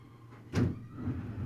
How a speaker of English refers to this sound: I'm gonna go close the window. Sorry about that.